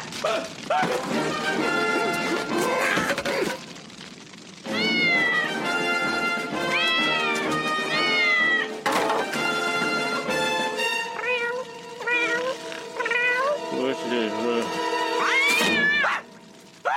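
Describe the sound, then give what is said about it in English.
A black cat meows and yowls loudly in a long run of drawn-out, wavering cries, with a few bangs and thuds mixed in and no talking. “Flames, searing pain, a black cat?”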